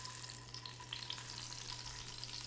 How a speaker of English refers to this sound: I'm going to turn it down low enough so that that sizzling is going to curb. And this will just sit and steep for the duration of cooking the rest of the soup.